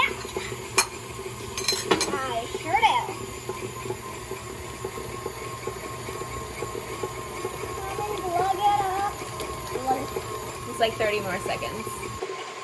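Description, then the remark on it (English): A utensil steadily stirs and scrapes around a bowl by hand, mixing eggs into creamed butter, with repeated clinks and scuffs throughout. Brief voices murmur in the background at a few points. “Now the eggs and the butter are getting mixed together for like a couple minutes total.”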